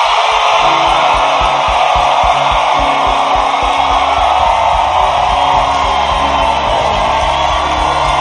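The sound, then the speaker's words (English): A large crowd gives the Lord its loudest clap and shout at full volume, a dense, continuous roar of applause mixed with whoops and yells that stays loud and steady for the whole stretch. “I said your loudest clap and your loudest shout.”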